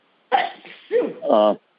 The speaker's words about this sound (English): Bless you, whoever's sneezing. Yeah, bless you. That wasn't me. I didn't know what that was. It sounded like a dog barking or something.